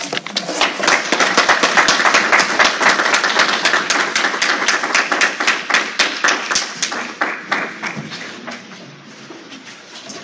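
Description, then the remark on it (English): An audience at an author reading breaks into sustained applause for the authors, a dense patter of many hands clapping that stays strong for several seconds before gradually thinning out toward the end. “Can we get one more round of applause for all of our authors?”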